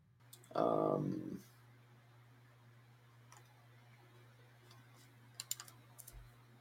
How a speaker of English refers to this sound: I am going to put another link in the comments. I'm typing it out. Sorry for the awkward silence.